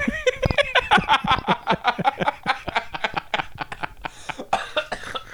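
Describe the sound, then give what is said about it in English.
A person caught in a choking coughing fit, loud, with a long run of rapid, harsh hacks and wheezy gasps that barely pause for breath. “That's how you know you're getting old. When you start getting the old man cough.”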